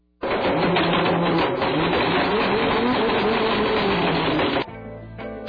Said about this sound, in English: I know this won't work on the air, but we should totally just play the audio of him blending the iPhone. All right. Yeah, you go to YouTube and just put in Will It Blend.